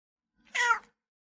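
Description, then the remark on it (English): A single short, clear cat meow, rising and falling over about half a second with silence around it and no talking. “Living with cats in a van is very similar with living with cats in your home.”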